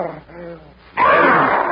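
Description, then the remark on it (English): A strangled death cry from a character stabbed with a knife as he crashes forward on his face: a low, wavering moan that suddenly bursts into a loud, harsh, rasping wail, sustained for almost a second without any words. “With a weird death cry, crashes forward on his face.”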